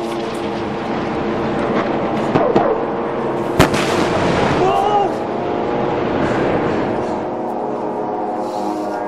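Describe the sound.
Two sharp, booming Israeli airstrike explosions around an apartment building in the middle of Gaza City, just past midnight on July 29, 2014, with Israeli drones around: a smaller one and then a louder crack, cutting through a steady droning hum, with brief excited voices following.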